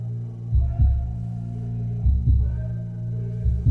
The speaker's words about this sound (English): The first music I ever heard was my mother's heartbeat. The most beautiful music in the whole world. Boom, boom, boom, boom.